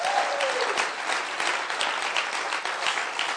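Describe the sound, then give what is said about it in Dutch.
Steady applause from an audience for two people and their family, a dense crackle of many hands clapping at once, sustained and fairly loud throughout without pause. “Dus ik zou eigenlijk willen voorstellen, zullen we eens echt een goed applaus geven voor deze twee fantastische mensen met hun gezin.”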